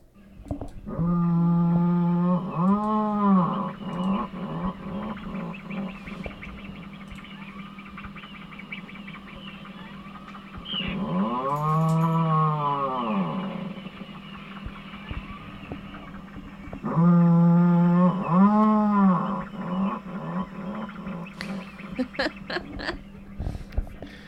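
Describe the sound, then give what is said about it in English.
An adult puffin growls in three drawn-out, buzzy bouts, each swelling and then sinking in pitch like a low revving motor, with a steady rumbling hum between them. “This is an adult puffin that is actually growling.”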